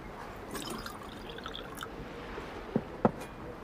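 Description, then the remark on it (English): Water trickles softly into a container in a steady, gentle stream, with a couple of sharper splashing drips near the end. The sound is quiet, and nobody speaks. “Did you get water?”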